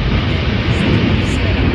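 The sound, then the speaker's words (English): A propane tank fire in a sped-up video roars loudly and without a break, a dense, rumbling whoosh heavy in the low end that holds at an even level throughout. “When it's propane on fire, it absolutely does that.”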